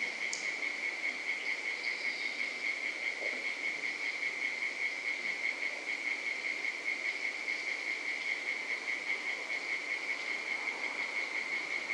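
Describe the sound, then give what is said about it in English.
Cicadas buzz steadily on a hot night, a continuous high-pitched drone that never lets up, layered over a dense, even chorus of insect noise at moderate loudness with no voices. “And yes, cicadas.”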